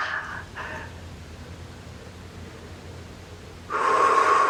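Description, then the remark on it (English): Two short, airy sniffs open the quiet stretch, then a loud, rushing deep breath with a slight throaty edge, clearing the throat, comes in near the end; nobody speaks. “Deep breath, clear, cough, swallow, breathe.”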